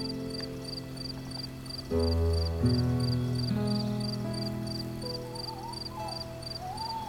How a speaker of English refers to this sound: What? That old owl? Yeah. Yes, I think he probably did. He certainly had the best seat in the house up in that old oak tree.